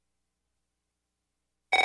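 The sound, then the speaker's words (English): After a long silence, a loud electronic telephone ring bursts in right at the end, a fast warbling trill that is cut off almost as soon as it starts. “If fear strikes your heart when the phone rings, knowing it may be another bill collector”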